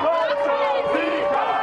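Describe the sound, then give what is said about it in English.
A big crowd of St. Peter's University students in Jersey City, New Jersey, cheering and yelling at once as they send their team off to Philadelphia for the Sweet 16, a loud, dense wash of overlapping voices with sustained high-pitched shouts that holds steady from start to finish. “Huge crowd here, sending them off to Philadelphia for a big win in the Sweet 16.”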